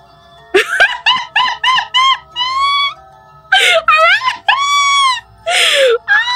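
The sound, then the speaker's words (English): Loud, tonal wailing cries rise and fall in pitch: first a quick run of short, pulsing wails, then longer drawn-out moaning calls sliding up and down, with no speech. “There's a lot of wailing coming from over there.”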